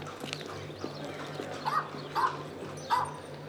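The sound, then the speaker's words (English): A dog named Mara, which came running out of a pub, barks three times in short, evenly spaced yelps, not loud, over a low steady hum with some faint clattering earlier on. “A dog! I love dogs!”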